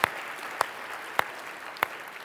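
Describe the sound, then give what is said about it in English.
An audience applauds after a baptism in a steady wash of clapping, with four sharper claps standing out at regular intervals over the continuous patter. No voices are heard. “You want to clap? Let's clap, man.”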